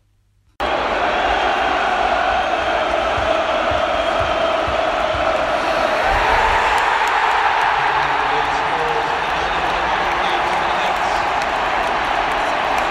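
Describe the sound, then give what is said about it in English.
A huge football crowd at St James' Park roars without pause in the last 15 seconds before the final whistle of Newcastle's 2-1 victory over Manchester City, a dense wall of cheering, chanting and shouting that stays loud and steady throughout, with whistles and clapping scattered through the din. “This is the 15 seconds or so leading up to the final whistle in the victory over Manchester City.”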